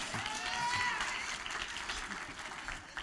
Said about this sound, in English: Somebody ought to clap their hand.